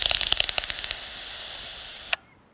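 Pipistrelle bat clicks, made out of the bat's mouth, in a quick, dry burst that slows and thins out over the first second, followed by a hiss and a single sharp click near the end.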